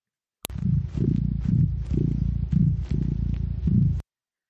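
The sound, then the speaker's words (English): A male domestic cat purring, a steady low rumble that swells and eases in regular breathing cycles for about three and a half seconds, with no voices. “Oh, he's purring.”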